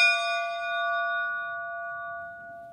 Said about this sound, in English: that just 2 streets from here, there was a French school, French Protestant school. And we have kept, so it closed after the Second World War, but we have kept the bell.